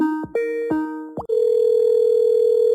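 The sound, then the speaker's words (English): A telephone line rings before the call connects: a few short alternating electronic tones, then one long, steady, fairly loud tone, heard alone with no voices. “So here's that phone conversation.”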